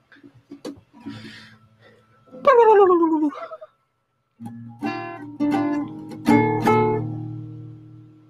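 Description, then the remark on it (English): Dogs whine and whimper in rising, excited cries as someone arrives home, then break into a series of loud barks with overlapping yelps, all in a short burst with no talking. “I need to stand up so I can let the dogs out because someone just got home.”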